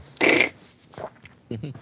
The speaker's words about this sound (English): Oh, I just farted.